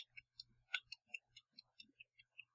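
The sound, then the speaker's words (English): A voice imitates wet ASMR mouth clicks: a quick, fairly regular series of about a dozen sharp, moist tongue clicks, moderately quiet, with no talking. “You're getting too wet and sloppy. She doesn't do wet and sloppy clicks.”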